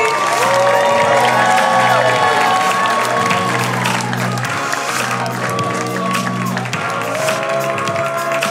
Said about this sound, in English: So why don't you guys put your hands together right now. Start clapping. Funniest girls in town. Go crazy.